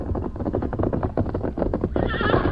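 Hooves pound in a quick, steady gallop as Silver, a white horse, arrives alone on a moonlit night, then lets out a loud, shrill, quavering whinny that rings over the last of the hoofbeats. No one speaks.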